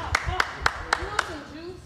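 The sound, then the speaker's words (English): Five crisp, evenly spaced hand claps in a steady rhythm, sharp and moderately loud, with a faint murmur of voices underneath. “Clap it up for them.”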